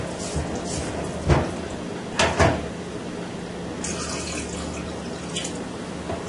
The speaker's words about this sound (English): Now we add water into the mixture of flour and stir well. Add water in gently. And if you need more, you can always put more.